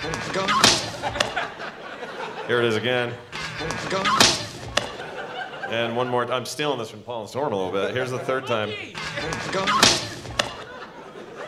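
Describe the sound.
Three sharp, wet smacks of dough slapping into a man's face in a film scene, real sound rather than Foley, each a sudden loud burst spaced several seconds apart, with a man talking in the gaps between them.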